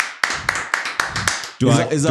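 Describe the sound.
About six sharp hand claps in a steady, moderately quick rhythm, each a crisp slap, before a voice starts talking right after the clapping stops.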